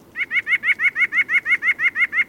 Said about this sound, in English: White-breasted nuthatches aren't the toughest birds on the block. They're petite songbirds that walk upside down on tree trunks looking for food, and their song sounds a bit like laughter.